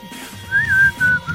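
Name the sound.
person whistling a tune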